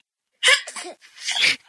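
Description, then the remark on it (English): A small, high-pitched sneeze like a baby's: a short voiced catch of breath, then a brief breathy burst, with no talking. “Baby sneezing.”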